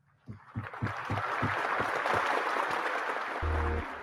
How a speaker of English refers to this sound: All right. So round of applause for you.